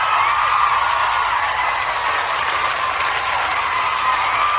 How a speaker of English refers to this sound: Oh, would you look at that? The crowd loves it.